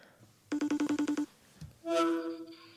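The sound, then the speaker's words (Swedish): A phone rings on an outgoing call to John: a quick burst of about eight rapid electronic pulses, a short pause, then a longer steady ringing tone, fairly loud, with no talking. “Nu ringer vi John.”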